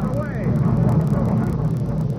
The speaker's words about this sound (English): I'm sorry, I didn't mean to grab you, but that baggage truck was about to run you down. I didn't hear it coming.